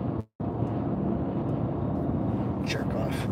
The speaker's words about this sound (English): I got a tractor trailer here cutting in.